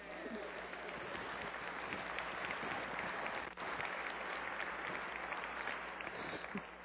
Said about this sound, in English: And I'm so grateful for the work that our youth does, our youth program. That's the part that you guys are supposed to applaud. Yeah.